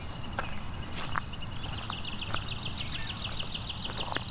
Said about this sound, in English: There's a chipping sparrow.